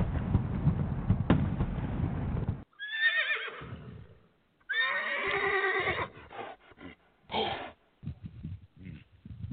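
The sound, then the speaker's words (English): Horses whinny loudly several times, with high, quavering neighs that rise and fall in separate bursts. A rough, noisy rush comes before them, and snorting follows the calls. “I mean, I took the horses out. Did you get them all?”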